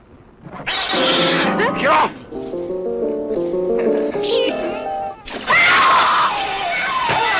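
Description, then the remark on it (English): Loud, piercing unearthly shrieks in a horror movie trailer burst out twice, each sliding and wavering in pitch, with a lower, steadier wailing tone sustained between them. “A flash of steel. An unearthly shriek. An icy breath.”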